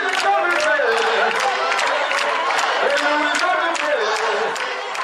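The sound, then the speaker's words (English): A large crowd at a Lord's Chosen church gathering sings together in a big echoing arena, as choirs and mock troops with papier-mâché swords storm the space singing and clapping, sharp hand claps and scattered cheers rising over the steady, loud mass of voices. “Choirs come and go from the big arena, and the mock troops of the Lord's Chosen with their papier-mâché swords jokingly storm the space from time to time, singing and clapping.”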